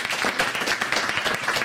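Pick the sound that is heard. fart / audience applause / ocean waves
audience applause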